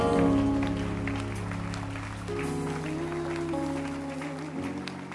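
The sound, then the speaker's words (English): An audience applauds with steady, dense clapping that holds for several seconds over sustained keyboard chords that shift pitch partway through, with no one speaking. “Keep clapping for them.”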